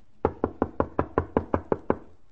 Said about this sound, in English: Oh, go ahead. Knock again.